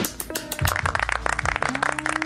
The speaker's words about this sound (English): That's all you do, is you just clap at them, and then hearts come, and that's like... That's the game so far, is giving kudos to people I either know or don't know because they live in Japan.